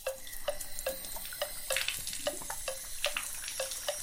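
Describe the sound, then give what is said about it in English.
Warm water runs steadily into a bath for a cat, a continuous splashing and gurgling with small recurring spatters and bubbly bursts throughout, no voices present. “According to the internet, cats like especially warm water.”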